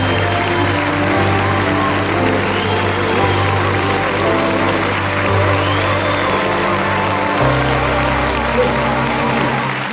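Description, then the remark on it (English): Audience applause for celebrity guest Dame June Whitfield that stays full and steady for the whole stretch, a dense wash of many hands clapping at constant loudness, with a low sustained tone running underneath. “We give a last orders of the garter of applause to our celebrity Dame, June Whitfield.”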